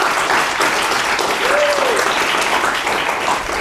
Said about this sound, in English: Can we all give them a warm round of applause for joining us?